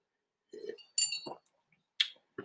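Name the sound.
wine glasses clinking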